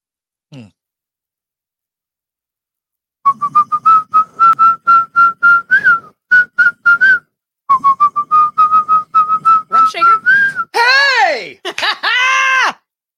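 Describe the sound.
Someone whistles a hip-hop song melody in quick rhythmic bursts of short, steady notes with brief pauses, ending in a few louder sliding, wavering tones.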